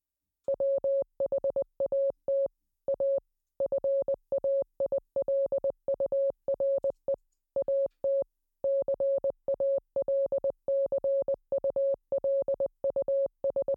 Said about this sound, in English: So with a 15, you can also make out a snippet of the Morse code as it kind of goes around and you hear this.